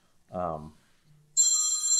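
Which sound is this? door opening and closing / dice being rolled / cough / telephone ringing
telephone ringing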